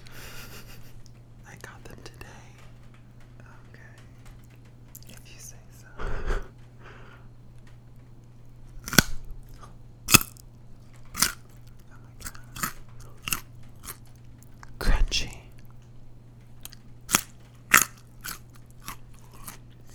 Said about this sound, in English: But let's get a nice crunch out of them. They're fresh.